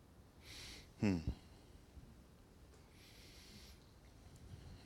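A single sharp sneeze: a brief breathy intake, then a sudden loud voiced burst that cuts off within half a second. A softer hiss follows and the rest stays quiet.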